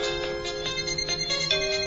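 A mobile phone ringtone plays a bright, electronic melody of sustained, tuneful notes, loud, continuing steadily for the whole couple of seconds with no one speaking.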